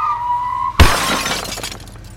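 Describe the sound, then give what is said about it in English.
A steady high tone hums briefly, then a sudden loud crash bursts in with glass shattering, its bright tinkling debris scattering and fading over about a second. “You're going to crash into something. You're going to hit something.”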